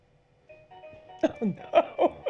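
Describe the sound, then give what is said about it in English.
A mobile phone ringtone plays a steady, electronic melodic tone, and about halfway through a person starts talking over it while the ringing continues. “Oh, no. It's my phone, too.”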